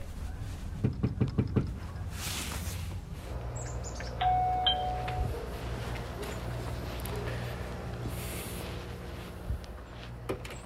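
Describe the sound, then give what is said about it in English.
Five quick, firm knocks rap on a front door in Salisbury in a rapid series, followed a few seconds later by a brief electronic chime, with faint outdoor ambience and birds throughout. “I essentially just kind of knocked on a lot of doors.”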